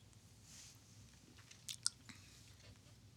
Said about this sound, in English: Well, I only took one sip just as we were getting started. Okay. Let me take another one again.